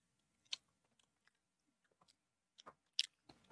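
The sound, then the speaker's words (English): Chewing of a booger-flavored candy: a few sharp, crisp crunches and wet smacking bites, spaced irregularly and loud against near silence, with no talking. “I'm over here chewing on boogers.”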